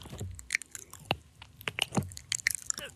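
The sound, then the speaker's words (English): Wet squishing and sticky clicking from a foreskin being rolled back, an irregular run of soft smacks and squelches across a few seconds with no one talking. “Someone chewing gum or someone's huge foreskin being rolled back.”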